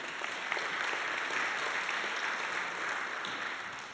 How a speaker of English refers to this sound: 25 years of faithfulness. Give the Lord a clap offering and clap for yourselves as well.